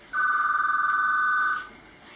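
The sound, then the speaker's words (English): A telephone rings once as a character gets another call, a single loud, steady electronic trill lasting about a second and a half before cutting off, with no voices. “But anyway, he gets another call.”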